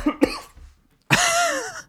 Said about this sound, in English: Just wanted to cough there for a second.